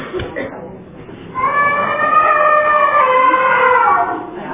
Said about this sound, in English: My elephant has trumpeted. This is a little free app called Timer Plus, and I like it. You can set different sort of tea timers to be however long you want and have some creative noises that come off besides just a ringing bell.